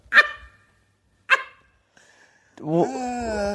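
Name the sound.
dog barking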